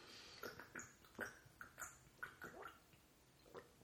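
Quiet sipping of water: a quick, irregular string of short wet slurps and gulps, about ten in a row, with no talking.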